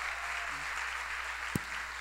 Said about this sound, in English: Give these ladies a round of applause.